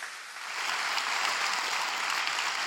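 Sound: audience clapping hands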